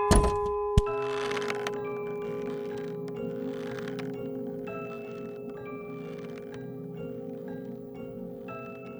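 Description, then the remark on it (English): A village clock bell chimes, struck sharply twice in quick succession, then left to ring with a rich, humming tone that slowly fades over several seconds. No voices are heard. “Meanwhile, I hope not to lose any of you, and that your village clock chime does.”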